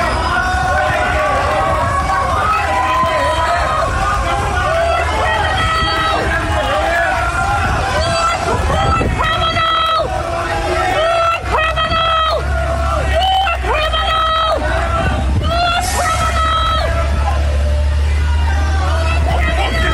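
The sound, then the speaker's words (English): A loud, dense crowd heckles a young woman, shouting and yelling over one another in a continuous, agitated din, raised voices jeering with no break for the whole stretch. “Yeah, well, basically holding the tail of her long-ass coat while this crowd heckled the shit out of her.”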